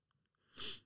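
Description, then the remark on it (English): A single sharp nasal sniff, fairly loud, rising quickly after a few faint clicks and breaths, with a short airy rush of breath through the nose. “Sorry for sniffing.”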